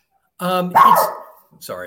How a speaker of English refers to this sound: Dogs in the background. There we go. It's a tiny, well, it's Ellie, the terrier. Ferocious bark, very little bite. she's very cute, but, you know, a leaf moves someplace in Maricopa County, Arizona, and Ellie barks at it.